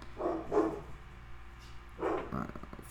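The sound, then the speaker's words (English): Dogs bark in two short bursts, a pair of quick barks followed by another pair a second later, moderately loud over a low background hum. “Doggies over here barking.”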